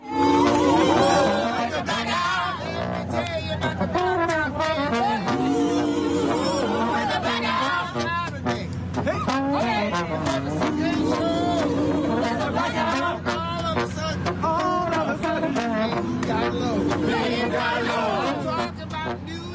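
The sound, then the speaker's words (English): Andre DeShields improvises the trombone lick that opens Hadestown, sliding and bluesy, over the steady hubbub of a crowd standing out on the street. Its wavering brassy notes rise and fall above continuous chatter for about twenty seconds. “You're going to hear the legendary and Tony-winning Andre DeShields improvising with the trombone lick that opens a Hadestown as this crowd of people are just standing out on the street.”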